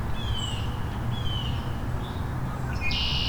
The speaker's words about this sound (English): Red-winged blackbird.